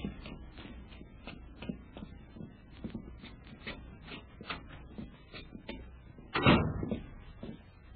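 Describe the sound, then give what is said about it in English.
Heavy footsteps of several people clomp up bare, uncarpeted wooden hotel stairs, a rapid, uneven run of hard thuds, ending with one louder, booming knock. “Hey, what do you guys want to make so much noise for? It's not like a herd of cattle.”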